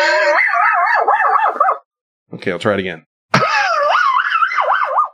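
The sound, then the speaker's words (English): A voice mimics a failing car starter with a long, warbling, whiny tone that rises and falls. A short spoken remark follows, then a second, equally wavering imitation. “Yeah, it does sound like an animal making that noise. Like a weird whistle or a... So, yeah, now if you're trying to start your car, it's like...”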